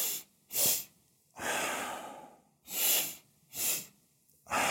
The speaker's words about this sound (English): Now, to do it, all you need to do is inhale twice through the nose, one long inhale followed by a quick, shorter one, and then exhale deeply through the mouth. So you do this like this.